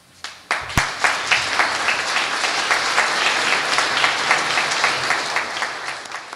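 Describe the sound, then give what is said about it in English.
An audience breaks into sustained applause at the end of a speech on antitrust enforcement, many hands clapping in a dense, steady roar that rises quickly and holds strong throughout, full. “All right, so strong applause for that final thought”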